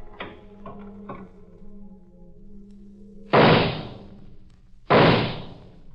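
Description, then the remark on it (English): A door on the second floor of a house is opened with a few quick latch clicks and rattles over a low hum, followed by two loud, sharp bangs that ring out and fade, about a second and a half apart, in the drama Double Cross. “Then I opened the door.”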